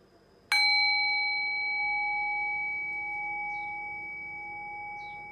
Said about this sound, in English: And now ring the sound of the bell again. Allow the decay of the bell to guide your awareness into silence.